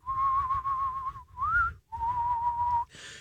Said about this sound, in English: you whistle for them for 5 seconds.